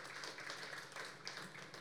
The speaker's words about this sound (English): And for that, we give God praise. That because here's the deal. And there's a hand clap.